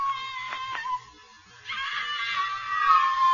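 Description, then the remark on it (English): A woman screams in a shrill, high-pitched wail: a first cry breaks off briefly, then a longer sustained scream returns and grows louder toward the end, with no talking. “The only sound was ….”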